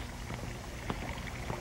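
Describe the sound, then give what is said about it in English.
Steady, low rushing of drainage water flowing through a mineshaft, with a few soft splashing bursts rising briefly out of the continuous wash. No one speaks. “Oh, this drainage water.”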